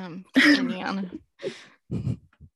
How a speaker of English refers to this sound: Oh, sorry. I'm trying not to cough here, so sorry.